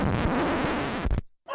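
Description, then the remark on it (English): A dog named Lucy barks loudly and harshly in a rough, continuous burst lasting about a second, then it cuts off abruptly into a brief silence before another short sound begins. “Sorry about that, it's the dog.”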